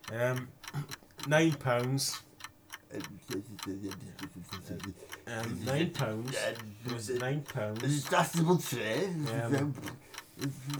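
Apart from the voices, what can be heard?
ticking countdown clock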